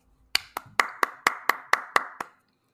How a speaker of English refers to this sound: That's an applause to you, person out there who wrote that. Yeah, whoever wrote that IMDb synopsis.